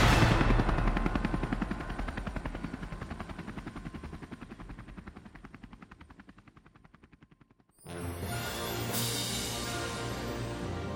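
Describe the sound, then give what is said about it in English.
A helicopter takes off from outside a visitor center, its rotor chopping in a rapid, steady thump that gradually fades as it lifts away, then cuts abruptly to a louder, denser burst of rotor noise. “What do you say we head out of the visitor center here and go hop on an helicopter and get out of here?”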